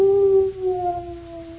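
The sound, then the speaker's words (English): A gloomy dog lets out one long, mournful howl that slowly sinks in pitch, clear with nothing else around it, in a Chex cereal advertisement. “And because Jimmy was so gloomy, Jimmy's dog felt gloomy, too.”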